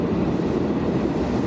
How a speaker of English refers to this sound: wait for the train to pass, we'll get another honk.